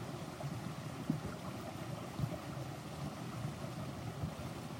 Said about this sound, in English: I'm feeling the water inside this vessel, this body, synchronizing up with the water in the stream.